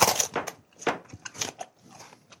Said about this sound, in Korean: 우리 씹어 먹을 겁니다. 이제 바람질 안 들립니다. 씹어 먹는다고 하셨어요.